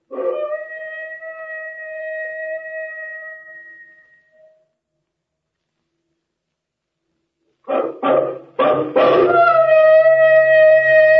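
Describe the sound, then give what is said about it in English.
A long, wavering dog howl fades out, then after a silence a few sharp barks lead into another loud, sustained howl with rich harmonics, coming from inside a temple. “Did you hear that? That came from inside the temple.”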